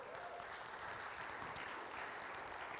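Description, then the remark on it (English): A church audience applauds a speaker invited on stage, with a steady, dense wash of many hands clapping at once, fairly soft and even throughout, with no voices standing out. “If everybody could give her a big round of applause.”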